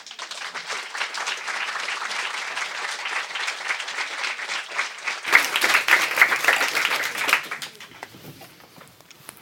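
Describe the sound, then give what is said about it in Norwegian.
An audience applauds warmly as three people are welcomed onto a stage, a dense, steady patter of many hands clapping for several seconds, with a few sharper claps and whoops near the end before it fades out. “La oss ønske de tre opp på scenen med en varm applaus.”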